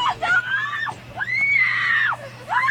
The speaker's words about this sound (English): And then the girlfriend's screaming in his face. What is that going to do?